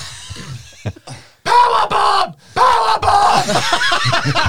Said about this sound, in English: Powerbomb! Powerbomb! That means screaming like a banshee.